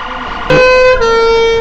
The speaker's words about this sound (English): As we come onto the site, as you can hear, there's quite a bit of noise, the two tones, the sirens, the bells, all been going off this morning.